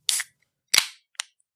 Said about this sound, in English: I shouldn't do that every time now. It sounds so good. I've been waiting to open my beer until you start going.